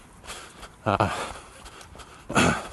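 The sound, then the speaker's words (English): Two loud, heavy breaths about a second and a half apart, with steady rushing wind-like noise in between, from someone running at about a 9-minute-mile pace on a slightly varying incline. “And you can still hear that my breathing is not brilliant.”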